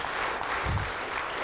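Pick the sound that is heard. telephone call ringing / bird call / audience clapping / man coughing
audience clapping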